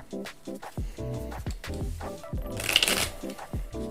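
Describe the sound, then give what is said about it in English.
Tarot cards being shuffled, a quick series of crisp riffling and slapping bursts with a louder flurry near the end, alongside faint background tones. “Just gonna shuffle real quick.”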